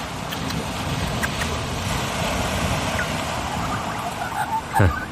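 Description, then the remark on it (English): Steady rushing wash of ocean waves rolling onto a beach, filling the background continuously, with a few brief calls from an Australian magpie breaking through near the end. “Hear the waves coming in like that and little magpie chatting away.”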